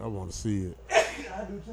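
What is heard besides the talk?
sneeze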